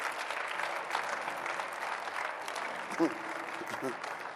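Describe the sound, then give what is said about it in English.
An audience claps steadily, a dense, continuous wash of many hands at an even loudness, with a voice briefly breaking through the applause near the end. “Even women can clap.”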